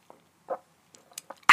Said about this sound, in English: If I need to take a sip of water, I'm going to go take a sip of water. If it's in a reasonable amount of time, I'm not going to cut it out. Like right now, hopefully I can sip this water real fast and be right back.